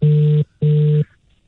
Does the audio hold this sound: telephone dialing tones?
yes